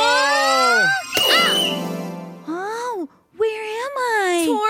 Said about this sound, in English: You just got hit in the head with a volleyball.